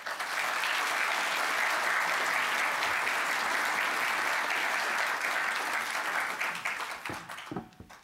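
Steady, dense applause from a sizable audience welcoming a speaker fills the room at full volume for several seconds, then thins into scattered individual claps and fades out near the end.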